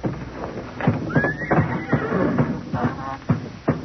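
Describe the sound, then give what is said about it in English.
A horse lets out a short, high whinny early on, surrounded by repeated hoof stamps and thumps on a hard floor as old horses tied in their barn stalls shift about. No one speaks. “All those old nags tied up in their stalls?”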